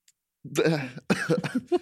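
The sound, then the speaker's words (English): A person coughs, a couple of harsh, throaty bursts in quick succession, with no other sound around them. “I had to cough.”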